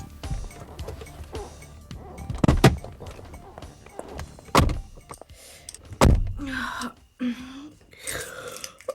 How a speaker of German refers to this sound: Der Wagen rollte zur Garage, wo Kathys Roadster parkte. Die beiden Frauen stiegen aus.